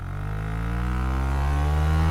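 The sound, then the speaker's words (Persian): A loud motorcycle engine revs steadily while riding through busy city streets in Mumbai, India, its droning hum climbing slightly in pitch over about two seconds with no talking. “چه حالی میده بوق بزنی یا گاز بدی.”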